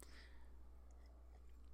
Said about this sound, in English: As I sip my black coffee. That's right. I'm not putting shit in it. I'm not putting sugar in it anymore. I'm done. Going old school. Doing what my Greek grandmother, my yaya, used to do. Just fucking straight up coffee.